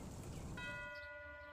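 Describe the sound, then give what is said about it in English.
A doorbell rings once, a bright metallic chime that lingers and rings out steadily over a soft hissing background. No one speaks. “The archaic ring of a doorbell welcomes friends and loved ones on holidays and special occasions”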